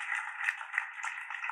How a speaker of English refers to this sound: Hold on. Give y'all the hand claps, bro. Give y'all the hand claps. Good job out there.